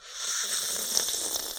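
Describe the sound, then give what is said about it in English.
A steady, airy slurp of someone sipping tea, a hissy, breathy sound lasting under two seconds at a moderate level with a brief brighter squeak near the middle, and no talking. “Okay, I'm gonna take a sip. Maybe it'll be super loud.”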